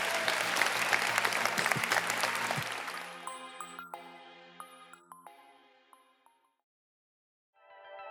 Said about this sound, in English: Okay, give a round of applause. We appreciate you being here.